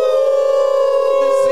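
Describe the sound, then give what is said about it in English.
People in Erie, Pennsylvania howl like wolves, like the Seawolves, the Eastern League champions, in one long, loud, sustained note held at a steady pitch, lasting the whole moment without a break. “Hey, let's all howl like the Seawolves.”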